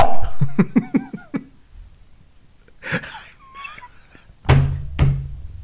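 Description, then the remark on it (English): Hands imitate a dog's bark: a quick run of about six short, pitched yaps, then a pause and a few louder, breathy, thumping bursts. No one speaks. “have you heard of the barking hand?”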